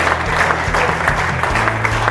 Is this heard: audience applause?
yes